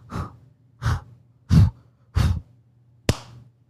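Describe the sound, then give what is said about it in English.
A young boy demonstrates balloon breathing, breathing heavily and deliberately, five strong breathy puffs in a steady rhythm with short pauses between, the last one sharper and more abrupt. No talking. “And he was like, balloon breathing. And I was like, why don't you show me this balloon breathing?”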